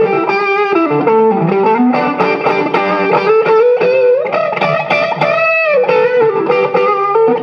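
An electric guitar with a light overdrive plays a steady run of sustained, harmonically rich notes and chords, loud and continuous for the whole stretch, with no voices.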